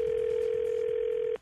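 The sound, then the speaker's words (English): A single steady electronic phone tone, loud, holds evenly for over a second and then cuts off abruptly as a call to a house connects, with a faint hiss behind it and no voices. “Let's listen into today's phone tap.”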